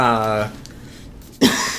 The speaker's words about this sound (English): God, now I'm coughing. I'm not signaling you to stop asking questions. I'm just coughing.